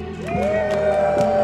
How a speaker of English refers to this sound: The worshippers behind me screamed in triumph.